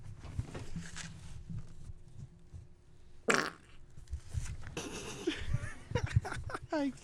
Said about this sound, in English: I can and I did, and I wasn't expecting it. Oh, why are farts funny? I don't know, but they are. Absolutely they are. I'm glad that happened.